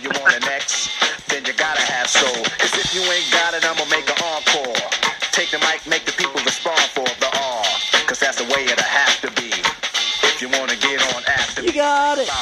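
A hip-hop track plays loud, with rapid rapped vocals riding over a steady punchy beat that runs continuously throughout.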